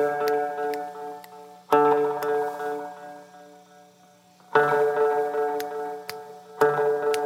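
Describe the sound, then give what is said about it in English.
A multi-tap cascading delay pedal effect repeats a sustained, buzzy tone and sharp clicks into a ticking rhythmic echo pattern, with loud re-attacks that swell, then fade and smear between repeats. No one speaks. “It creates patterns.”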